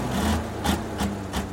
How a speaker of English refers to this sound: Your tractor sounds like it's got a clogged air intake. Maybe it's time to get a new air filter.